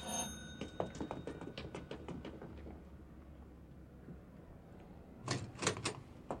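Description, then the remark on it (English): A doorbell rings in a rapid, rattling run of metallic strokes that fades out, then after a few seconds of quiet a second short, louder burst of ringing. “I'm gonna ring the bell now.”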